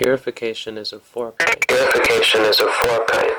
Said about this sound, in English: …, you're echoing, I think.